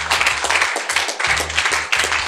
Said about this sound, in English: Let there be some joy in your clap, in your clapping. I said, let there be some joy in your clapping.